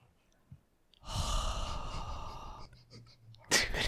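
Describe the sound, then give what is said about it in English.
A long, drawn-out sniff through the nose, a breathy hiss lasting under two seconds, followed after a pause by a shorter, sharper sniff. No one speaks. “Can you hear that? The sniffing?”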